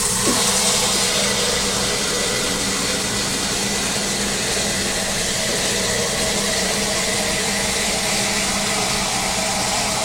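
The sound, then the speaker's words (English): A drip coffee maker brews with a steady, loud hiss and low rumbling hum that runs unbroken for the whole stretch, with faint gurgling textures and no voices. “All right, so the coffee is all brewed.”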